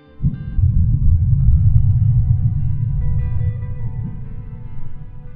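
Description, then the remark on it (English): Sped-up S waves (shear waves) from the 2011 Tohoku earthquake in Japan rendered as sound: a heavy, sustained low rumble that swells in quickly and rolls on for several seconds, with faint tonal hums ringing above the deep roar. “Then the S waves.”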